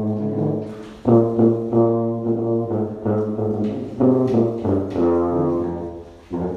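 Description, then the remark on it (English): A tuba plays a slow Christmas carol in deep, sustained brass notes, moving steadily from one held tone to the next with a full, resonant sound and no talking. “And then we're going to go door to door in our neighborhood and tuba carol at a safe social distance from the people in the house and from each other.”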